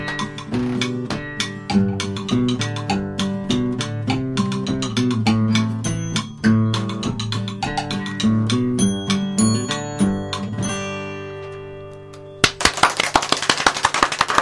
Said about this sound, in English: Man, oh man, the room is lighting up with applause.